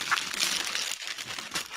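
Grogu-themed wrapping paper with a plaid bow rustles and rips as it is torn off a gift box in a steady, continuous burst of crinkling and tearing, with no voices over it.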